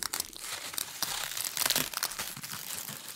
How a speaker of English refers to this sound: Suddenly, the sounds of bones breaking caused them to ruffle their wings in alarm.